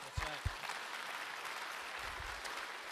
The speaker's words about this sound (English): That's right. Ooh, y'all clap to that.